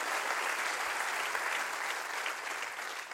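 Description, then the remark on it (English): A church audience at Christian Life, on the floor and in the balcony, applauds steadily, a dense, continuous wash of many hands clapping at once with no pauses, holding at an even, fairly loud level throughout. “Clap real big.”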